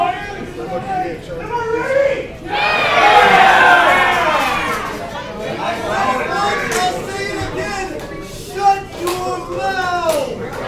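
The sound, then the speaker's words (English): A large arena crowd jeers and shouts at Morrison in a dense roar of many voices, surging loudly early on, then settling into continuous noisy hollering with scattered sharper yells. “Obviously, no love lost between Morrison and this crowd.”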